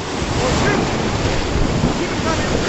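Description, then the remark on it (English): Loud, steady roar of rushing rapids at Horseshoe on the Kern River below the dam, heard from a gray inflatable raft, muffled as water splashes over a GoPro camera, with a dense turbulent hiss and no distinct voices coming through. “The sound of the audio got a little jumbled as water splashed the GoPro.”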